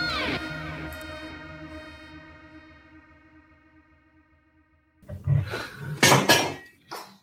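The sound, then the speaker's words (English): A resonant ringing tone slowly fades to near silence, then loud clattering bangs and knocks break out as a cat knocks a leg off a table. “The cat knocked the leg off the table.”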